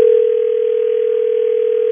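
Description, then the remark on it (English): A steady, continuous telephone dial tone as radio hosts at Hits 96.1 in Charlotte place a call, humming at an even level for about two seconds, clear with no talking over it. “Let's just try to get Shawn on the phone so we can figure this out, Angela.”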